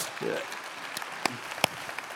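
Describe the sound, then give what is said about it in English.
Faint, scattered applause from a generous, volunteering community applauding itself: a handful of sharp, irregular claps over a steady hiss, with a brief murmur of voice near the start. “I think you deserve a round of applause from yourselves.”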